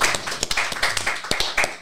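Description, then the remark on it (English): Several people clap together in a quick, uneven burst of sharp hand claps, moderately loud, filling the short moment without any talking. “Clap it off”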